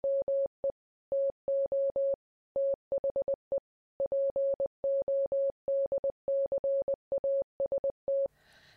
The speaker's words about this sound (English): you just heard a brief message in Morse code.